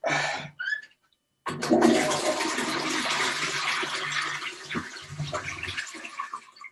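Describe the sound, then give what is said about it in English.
A toilet flushes: a short handle clunk and brief splash, a moment of silence, then a loud, sustained rush and gurgle of water that swirls on for several seconds. “And flush.”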